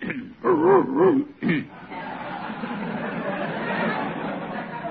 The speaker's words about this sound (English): Do you have a dog in your pocket? Oh, no, that's just me. When I worry about a case, I get a catch in my throat.